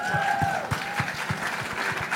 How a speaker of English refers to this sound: Clap it up for that, y'all.